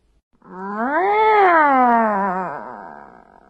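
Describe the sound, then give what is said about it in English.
A person imitates a dissatisfied cat's meow, a single long, drawn-out whiny call that rises then slowly falls and wavers, loud, with no other sounds around it. “Okay, then we have the dissatisfied meow.”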